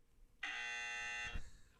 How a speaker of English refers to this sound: What sound is that, …? It's my buzzer.